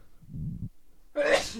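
human body sound, sneeze

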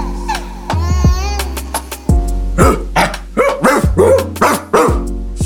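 animal, dogs barking

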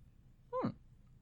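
human body sound, person yawning

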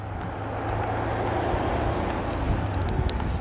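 vehicle, car driving past

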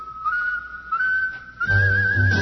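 human body sound, human whistling a tune

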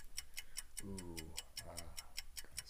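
signal or alarm, countdown timer clock ticking

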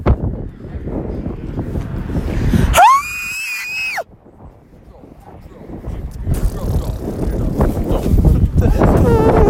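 nature, wind blowing into microphone

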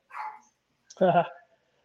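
animal, small dog yapping

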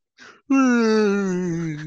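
human body sound, exaggerated yawn

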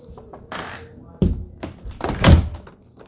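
household object, door being closed

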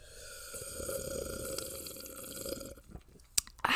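food or drink, slurping coffee

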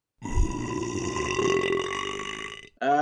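human body sound, burp

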